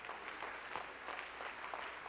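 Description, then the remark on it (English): A crowd of people clapping their hands to the Lord in praise of God, steady, sustained applause, the dense claps a continuous, moderately loud patter with no voices standing out. “Let's clap our hands to the Lord and give God praise.”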